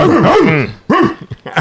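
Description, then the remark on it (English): A man's voice imitates a dog barking, with a drawn-out growly woof followed by a shorter bark and a few clipped yips, loud. “I'm the guard dog around here.”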